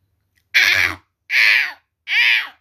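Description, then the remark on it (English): A crow caws three times, each call harsh, raspy and about half a second long, evenly spaced and loud. No other sounds accompany it. “The crow flew high up in the sky to check the hunter.”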